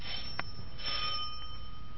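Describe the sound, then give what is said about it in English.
A house's front doorbell rings at about 8 o'clock at night with a sharp metallic strike followed by a sustained, bright ringing tone that hangs steadily over a low background hiss. No voices are heard. “Front door. Want me to answer, Ma?”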